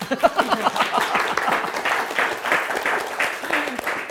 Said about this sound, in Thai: ผมก็ต้องขอขอบคุณนะครับผู้เข้าร่วมทุกท่านด้วยครับเราน่าจะจบลงด้วยเสียงปรบมือครับ